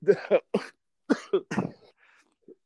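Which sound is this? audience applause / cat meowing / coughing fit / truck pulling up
coughing fit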